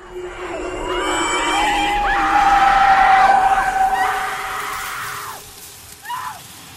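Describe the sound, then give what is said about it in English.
A woman lets out a loud, piercing scream that holds for about four seconds before breaking off, followed by a brief shorter cry over a low, rumbling background. “And then there just comes this moment where she just screams.”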